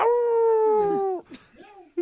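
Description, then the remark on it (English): A person imitates a dog with one loud, drawn-out, howling bark held for about a second, followed by a few brief, softer vocal noises. “Some of us bark.”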